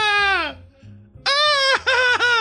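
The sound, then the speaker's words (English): A voice imitates the constant screaming the Northern Lights might make: a loud, high, wailing cry held for about half a second, a brief pause, then a longer stretch with a couple of wavering dips in pitch. “Would people be as excited about the Northern Lights if they sounded like screaming, just like constant screaming?”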